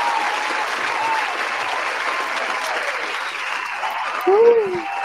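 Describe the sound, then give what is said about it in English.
Steady, dense clapping from a group fills the whole stretch, a continuous crackling roar of applause with a brief voice rising over it near the end. “Gotta give you a round of applause, brother.”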